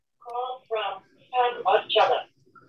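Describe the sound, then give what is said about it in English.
A mobile phone rings with a melodic, voice-like ringtone: four or five short tonal bursts in an uneven rhythm, moderately loud, with no one talking over it. “Sorry, my phone is ringing, but you know it is.”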